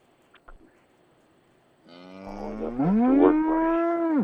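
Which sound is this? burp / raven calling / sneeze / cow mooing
cow mooing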